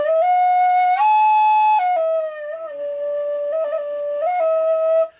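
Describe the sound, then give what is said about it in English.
A low D tin whistle plays a slow melody of long, sustained notes that step up and down with slight bends, breathy and steady in volume, with no voices. “And so, yeah, I am, this is my low D whistle.”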